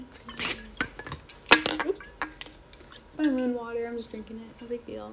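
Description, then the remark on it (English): Someone gets a glass of water: a few sharp clinks of glass and dishware, then a steady, faintly tonal pour that lasts a couple of seconds. No one speaks. “One second, let me get some water.”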